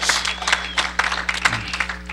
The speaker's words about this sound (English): Somebody give a Lord a hand clap in this place.